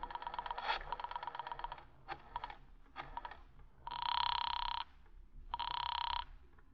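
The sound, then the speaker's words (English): A flurry of rapid mechanical clicks as a number is dialed on a borrowed telephone is followed by two steady, buzzing telephone rings with a short pause between them. No one speaks. “Do you mind if I use your phone a moment?”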